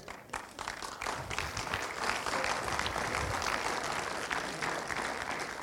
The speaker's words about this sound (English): Thanks for clapping it.